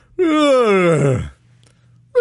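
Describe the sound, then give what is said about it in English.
A single long, drawn-out human yawn, used as a horse sound effect during a Bible reading, loud, sliding from a high pitch down to a low groan over about a second, followed by quiet. “And they answered the angel of the Lord that stood among the myrtle trees and said, first they yawned. Now I'm doing the horse sound.”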